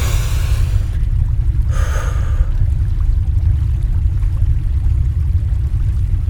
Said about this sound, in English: I can hear the river. If I go towards the river, I should find my way back to the Hereith, or at least the pub.